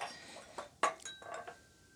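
Clean glasses clink together several times in quick, irregular succession as they are set out for a bourbon tasting of Heaven Hill and Evan Williams Bottled in Bond, with bright, high-pitched ringing tones that hang briefly after the sharpest knock. The sounds are fairly soft, and no one speaks.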